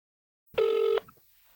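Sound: telephone dialing and ringing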